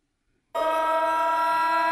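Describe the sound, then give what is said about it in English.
An alarm siren blares on abruptly after half a second of silence, a loud, steady electronic tone with many stacked harmonics that holds without wavering to the end. “It needs a fat alarm.”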